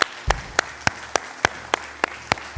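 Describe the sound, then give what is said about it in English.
A church audience claps in steady unison after a prayer, sharp even beats roughly three per second, moderately loud, with no voices over it. “Come on, would you give them one more round of applause?”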